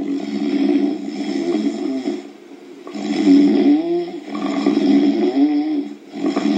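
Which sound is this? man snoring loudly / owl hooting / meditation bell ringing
man snoring loudly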